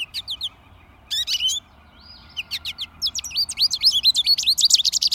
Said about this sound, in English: And here's an American goldfinch saying "potato chip" and repeating notes.